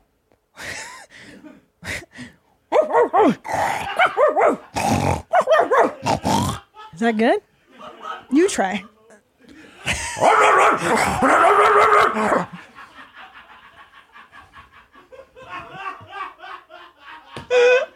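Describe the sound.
A person imitates a dog in a barking contest, letting out a string of loud barks and rough growls, with brief spoken remarks between the bursts and a lower, rasping growl trailing off at the end.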